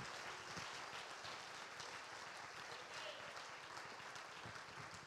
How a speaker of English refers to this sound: Oh, clap your hands and praise him.